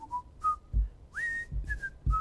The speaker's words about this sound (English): It's simple, and it's probably one of my favorite comedy shows of all time, but everybody knows when they hear it, The Whistle, the Andy Griffith Show.